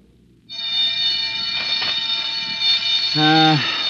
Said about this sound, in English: There's the yard bell.